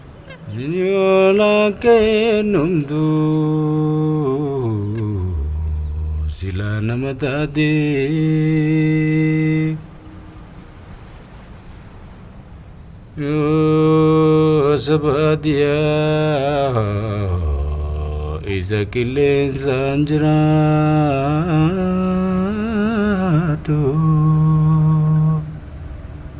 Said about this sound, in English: So here's an example of the sound design at the beginning of the film. As we see the title appear, we hear singing meshed together with ambient sounds, birds, a cigarette being lit, a car driving. Let's take a listen.